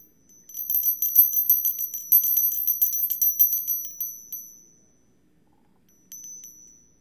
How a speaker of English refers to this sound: Each time you hear the bell,